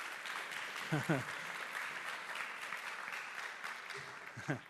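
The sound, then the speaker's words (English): Steady applause from a crowd fills the whole stretch, a dense patter of many hands clapping at an even level, with a few short voices calling out over it. “Guys, give him a round of applause.”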